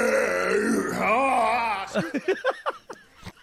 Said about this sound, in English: No, come on, man. So a gallon. Either have a burp or don't. A gallon of lemonade, and I think it went down in like 30-ish seconds.